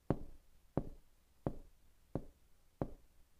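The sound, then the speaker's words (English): Five firm knocks on a door land at a slow, steady pace, each a sharp thud with a short hollow ring, fairly loud, with nothing else around them. “If He's knocking at your door, will you open it?”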